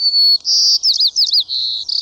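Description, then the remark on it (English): A white-crowned sparrow sings its buzzy song: a clear opening whistle, then rapid buzzy trills and slurred notes ending in a fast stuttering buzz, with no voices present. “The buzzy song seems to float on the air in much of the western United States.”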